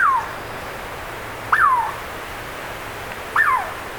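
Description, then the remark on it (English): A small, chestnut-red Douglas squirrel calls three times, each a clear, bird-like downward-sliding whistle, spaced about two seconds apart against a quiet background with no one talking. “Actually, we're hearing a Douglas squirrel, a pint-sized chestnut red native of forests from the Sierra Nevadas of California northward to coastal British Columbia and southeast Alaska.”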